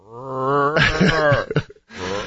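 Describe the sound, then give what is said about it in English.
A person vocally imitates a rutting deer's grunt: a drawn-out, rising groan that turns creaky and strained, breaks off for a moment, then starts again with another low groan. “A lot of times they sound like a haunted house door.”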